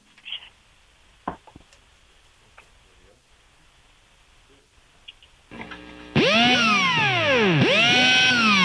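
After several seconds of faint clicks and rustles, a loud power drill whirs in, its high whine repeatedly revving up and winding down in sweeping arcs of pitch.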